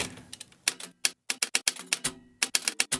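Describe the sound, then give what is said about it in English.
Mechanical typewriter keys strike in quick, uneven bursts, each a sharp clack, with brief pauses between runs of typing, as a woman at her desk at night translates letters into English. Clear, no voices. “She opens the enormous cabinet that contains hundreds of them, some without dates, without context, and sits every night at her desk, chronologically organizing them, then translating them one by one into English using a typewriter.”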